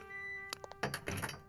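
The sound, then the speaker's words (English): A door being opened: a few sharp knocks and clunks, then a longer rattling, scraping burst, heard over a steady electrical hum with no talking. “Could someone help me with the door?”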